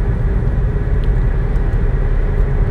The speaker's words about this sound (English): You guys hear the road noise. I'm on the really big roads in Raleigh.